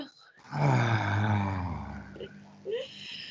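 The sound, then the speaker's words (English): A person demonstrates a deep breath, letting it out as a long, low, voiced sigh that sounds almost like a groan, fairly loud, then fading into a brief quiet breathy tail. “Well, part of it has to do with taking a deep breath, and I haven't seen you do that yet while you've been talking about.”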